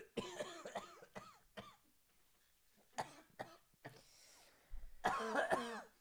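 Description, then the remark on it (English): A person makes exaggerated, strained coughing and choking noises as an impression of Grimace choking on a cough drop: a burst of sputtering gasps, a lull with a few weaker hacks, then a loud final fit. A human voice imitating choking. “He's still choking. He got a little cough drop in his throat.”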